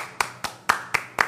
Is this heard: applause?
yes